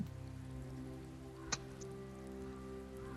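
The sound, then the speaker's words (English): Steady, soft rainfall patters on a surface at night over a low, droning background hum, with a single sharp drip or tap standing out midway. No one speaks. “So yeah, they've got a nice little horrible camp, just full of prisoners and azurs that are all just working away in the rain throughout the night.”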